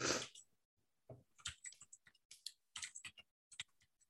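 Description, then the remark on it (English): Irregular bursts of typing on a computer keyboard while pulling up a film's cast list, quick crisp clicks clustered in short runs with brief pauses between, fairly faint and with no voices. “Sorry, I'm typing as I am pulling up the cast list.”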